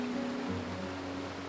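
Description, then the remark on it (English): A steady, unbroken rush of a waterfall inside a cave, a dense hiss with a low droning undertone, continuous and even in loudness, with no voices present. “It shines through the waterfall, lighting the cave a brilliant blue.”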